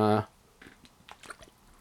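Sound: sipping water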